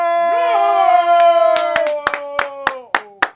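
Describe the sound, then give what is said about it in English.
Sparse, uneven hand claps from one or two people welcoming esports team Fnatic onto a stream, about ten sharp smacks, over a long sustained vocal howl that rises then slowly sinks. “Two hands clapping doesn't sound that impressive.”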